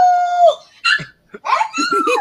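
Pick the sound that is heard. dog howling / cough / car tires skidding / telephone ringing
dog howling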